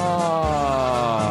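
Band music fading in the background at Todd Glass Studios headquarters holds a sustained, rich chord of bright horn-like tones that drift slightly in pitch, playing steadily at a moderate level with no voices over it.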